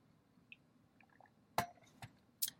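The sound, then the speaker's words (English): Someone drinks water from a glass: a few faint slurps, then three sharp clinks and taps as the glass is handled and set down. No one speaks. “I'm gonna grab a drink of water here.”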